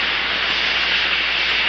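A steady, unbroken hiss of spraying mist, like a jet of moisture, holding level and fairly loud for under two seconds with no voices, used in an advertisement for the Moisturize Rolly 903 cigarette.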